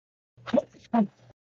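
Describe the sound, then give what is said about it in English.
A single sneeze in two quick bursts, a breathy build-up snapping into a sharp release, over a faint low hum with no talking. “Bless you, by the way.”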